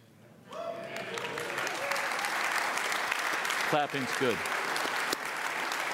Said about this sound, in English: Clapping's good.